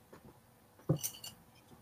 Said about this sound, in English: Yeah, sorry about that. My phone dropped.